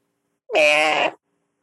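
A single drawn-out meow, loud, rising at the start and holding steady for under a second, with silence on either side.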